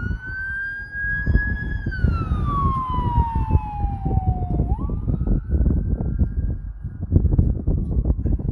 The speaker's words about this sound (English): Oh my God, the cops are coming. Oh, that's an ambulance.